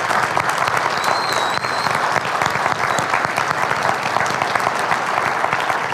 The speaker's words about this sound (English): If you're a mom, I want you to go ahead and stand up because I think you deserve that honor of a big round of applause, okay? So go ahead and stand up. And let's give them applause.